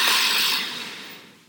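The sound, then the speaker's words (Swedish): A single deep breath drawn in through the nose, filling the belly with air, a soft airy rush that starts strong and gradually fades over about a second and a half. “Och vi andas in genom näsan och vi fyller upp magen med luft som en ballong.”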